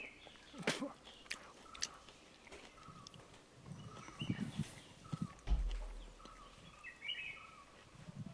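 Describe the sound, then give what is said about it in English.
Birds sing in the background in India, with bright, scattered high-pitched chirps and short trills recurring throughout, mixed with irregular crunching and clattering noises and a low rumble. No one speaks. “Well, the birds sound really pleasant there. That's why I was just kind of letting that one go to hear some more of those birds.”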